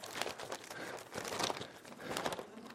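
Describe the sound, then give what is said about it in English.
Newspaper pages rustling and being shaken in bursts, a crisp crinkling noise that swells and fades several times over a few seconds, with no voices. “I just wanted to do that with the paper here.”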